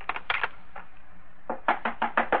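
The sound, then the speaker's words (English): Sharp knocks on a door: a quick cluster of raps, a brief pause, then a louder, insistent series of five knocks, with no voices. “Who's there? Who is it? Oh, open the door.”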